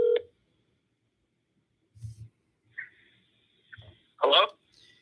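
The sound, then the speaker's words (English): Brief electronic phone-line tones and beeps on an outgoing call, spaced irregularly over a few seconds and fairly quiet, with soft low thumps and a sharper burst near the end. “Okay, if not picking up the phone, I'm calling someone else.”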